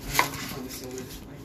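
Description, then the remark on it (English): A single crisp knife chop cutting the end off an onion on a cutting board, a sharp knock early on, then a low steady background hum with no talking. “I should probably cut the ends of the onion.”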